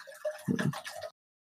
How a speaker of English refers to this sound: Do you hear that? Yeah. That's water, baby.